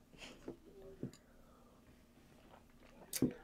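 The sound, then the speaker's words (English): Several quick sips and mouth sounds of people drinking coffee and mimosas, at uneven intervals, the last one the loudest, with a quiet murmur in the background. “Big sips.”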